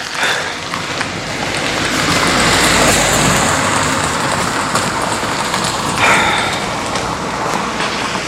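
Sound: car passing by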